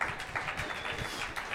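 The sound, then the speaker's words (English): An audience claps together in a steady, dense patter of many hands, sustained and even throughout, with no voices standing out. “He is, keep clapping for this one, your discipline.”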